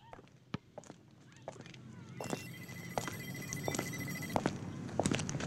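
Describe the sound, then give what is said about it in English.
A steady electronic ring from a little red earpiece-type phone left under a car's windshield wiper starts partway through and keeps going, while sharp footstep-like clicks and scattered knocks sound over a low background rumble. “There was a phone ringing somewhere.”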